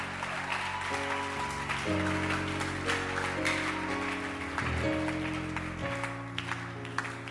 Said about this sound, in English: Choir or dancing stars? Choir. Clap your hands for her.